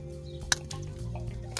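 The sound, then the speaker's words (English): Liquid sloshes about inside a bottle of 7-Eleven lemon tea being shaken, fairly quiet, with a sharp little click partway through and a low rumbling hum underneath, with no voices. “Give it a good shake. There's barely any air in this bottle.”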